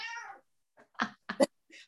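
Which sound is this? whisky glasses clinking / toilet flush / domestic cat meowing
domestic cat meowing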